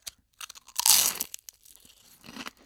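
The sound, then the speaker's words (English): Crisp crunching as wafer sticks taped together into a mock pan flute are bitten and chewed, with a loud burst near the start followed by smaller crackling bites, no voices. “You see, Professor, I'm actually just chewing into your pan flute right now.”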